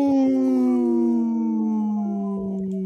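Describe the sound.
A person imitates a wolf's howl: one long, loud, sustained wail that slowly slides downward in pitch for about three seconds, with no other voices.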